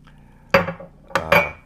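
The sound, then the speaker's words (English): A few sharp metallic clicks and cracks from a beer can being handled and cracked open to pour a beer, three quick bursts with brief tinny ringing, no voices. “I'm going to pour my beer first.”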